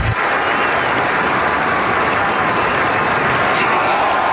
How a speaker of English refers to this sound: A round of applause for a true hero, Officer Tyler Moldovan.